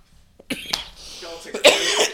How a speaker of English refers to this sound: I was holding that cough and it turned into a laugh and now my chest hurts.